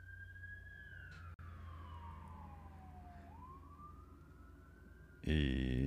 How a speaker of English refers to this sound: Just gotta let this ambulance or cop or fucking whoever go by.